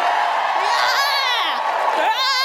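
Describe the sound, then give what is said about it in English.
A crowd cheers loudly and steadily in answer to a comedian's call for a cheer for immigration, many voices whooping and yelling together in high, wavering shouts that rise and fall, sustained without a break for a couple of seconds. “Give me a cheer for immigration!”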